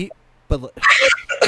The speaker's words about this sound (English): Yeah. Sorry. I cough.